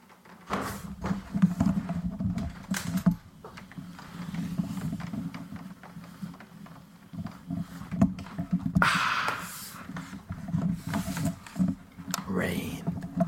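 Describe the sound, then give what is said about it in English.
Rain patters against a window in Bristol in a steady, uneven crackle of soft taps, with a low muffled rumble and murmuring voices underneath throughout. “It's been so long since I heard the pitter-patter of rain on your window.”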